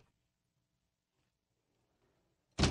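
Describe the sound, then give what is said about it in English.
Near silence with faint rustling, then a studio door opens at the very end with a sudden, loud clack of the latch. “And here, let me open the door for you here again.”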